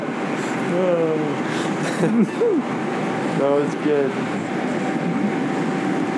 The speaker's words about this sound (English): we're on a plane. I don't know, how many hours into the plane ride?